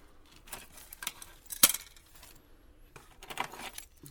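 Car keys jangle in several bright, metallic bursts, with one sharp clink partway through and a longer rattle near the end, with quiet pauses between.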